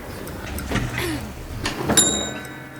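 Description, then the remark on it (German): An elevator arriving at the third floor settles with a mechanical rumble and clunks, then a single bright chime rings out as the doors slide open, at moderate volume. “Mit dem Fahrstuhl fuhren Martha Mühlstein, Elisabeth Jahrling und TKKG in den dritten Stock.”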